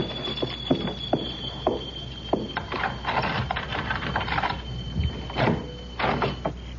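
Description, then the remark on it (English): Keys jingle and scrape in the lock of a locked door, followed by a run of metallic clicks and rattling as the mechanism turns and the door is worked open. “Oh, locked. Keys.”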